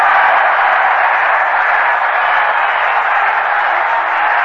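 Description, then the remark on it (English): The crowd at the Polo Grounds at a New York Mets game applauds after a groundout to third, a dense, steady wash of clapping and murmuring cheers that holds at an even, fairly loud level for the whole stretch without breaking. “An appreciative response from the crowd here at the Polo Ground.”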